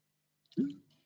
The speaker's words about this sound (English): Let me just get a drink of water.